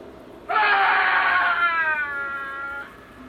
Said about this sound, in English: You could hear … screaming all the way down to his cell as it echoed through the recorder.